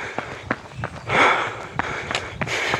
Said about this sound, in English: Now, ideally, when you're running, you need to get into a rhythm with your breathing. It's difficult to do that when you're talking, so I'm at a big disadvantage there.